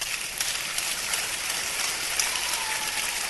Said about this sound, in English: I like the way people are clapping.